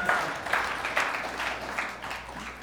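An audience at Axiom Church clapping together for Jesus, a dense, steady patter of many hands with small surges in intensity, moderately loud throughout and with no voices over it.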